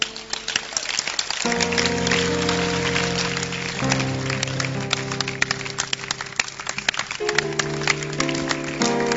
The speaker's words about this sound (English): Can you clap your hands?